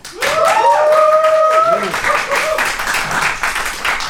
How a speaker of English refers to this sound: Okay, audience, we put it to you. Round of applause if you would back the mafia.